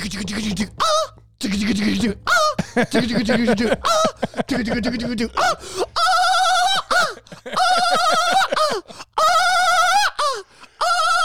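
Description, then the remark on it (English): A person vocally imitates bird-like cooing and warbling, with repeated rising, tonal calls and short pitched bursts, fairly loud, broken by brief pauses and bits of laughter. “Now you're sounding like a cuckoo burrow.”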